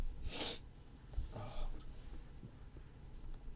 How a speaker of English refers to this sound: Let me go blow my nose so I don't keep sniffing.